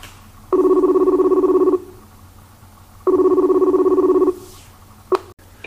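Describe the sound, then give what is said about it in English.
Two long electronic telephone rings, each about a second long with a pause between, heard clearly over a faint low hum, followed by a short click as the line picks up as a call is placed to a guest. “So let's get this guy on the phone.”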